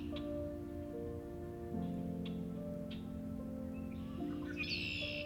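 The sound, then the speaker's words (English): A red-winged blackbird's harsh, buzzy roo-conk-a-lee trill rises near the end, after a few sharp clicky calls, all over a steady low droning tone that shifts pitch a couple of times; recorded in mid-March at Coots Paradise in Hamilton, Ontario. “Their songs can be described as a harsh roo-conk-a-lee.”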